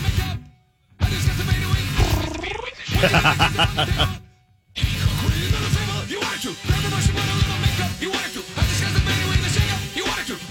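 A novelty song made from loud, rumbling fart noises strung together in rhythmic bursts, with a couple of brief silent breaks and some pitched, squeaky sweeps near the start.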